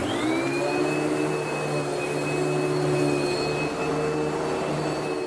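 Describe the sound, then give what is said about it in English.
A vacuum cleaner, in a recording taken from a YouTube clip, runs steadily, a loud continuous whirring drone with a high-pitched motor whine that holds constant throughout, with no voices. “That, Norman, ladies and gentlemen, is the sound of a vacuum cleaner taken off the internet.”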